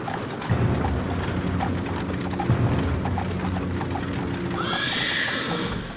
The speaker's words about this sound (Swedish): Han såg inte hästvagnen när den kom och dog omedelbart.